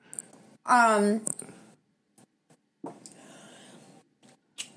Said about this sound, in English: This is a white Airhead. I honestly have no idea. I hope you can hear me chewing. Hold on, I'm gonna have to turn my mic away for this.